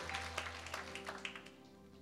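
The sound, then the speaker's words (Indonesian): An audience at a church service applauds for Jesus in a steady patter of many overlapping claps, fairly soft, with a low electrical hum running underneath. “Boleh tepuk tangan buat Tuhan Yesus.”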